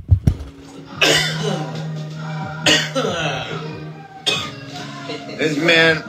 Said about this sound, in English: Nate Diaz was just smoking and getting this guy to cough around him